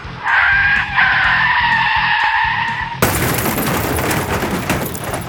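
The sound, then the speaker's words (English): A high, sustained screech over a rumbling engine as a rocket is fired from rooftops at a van on a street in rain gives way abruptly to a loud explosion that tips the van on its side, followed by a continuous roar of crashing, shattering debris. “From the rooftops, a rocket is fired at the rear vehicle.”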